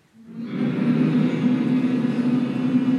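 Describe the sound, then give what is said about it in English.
A debate audience hums together to vote for the con side as the winner, in one loud, sustained drone, rising within the first half second and holding a steady low pitch to the end, with no talking over it. “If you think the con side won tonight, give me a hum.”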